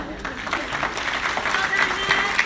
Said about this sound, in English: Yeah. Well done, bro. Come on, let's applaud this guy. Come on. Well done, bro.